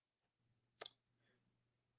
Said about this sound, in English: We're going to get some typing right here